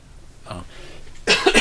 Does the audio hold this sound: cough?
yes